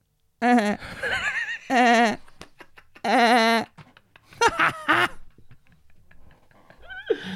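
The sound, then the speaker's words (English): A person imitates a goat with several loud, quavering bleats broken by short gaps, followed by choppier laughter-like vocal bursts and one more brief bleat at the end. “Can you give us a little goat sound?”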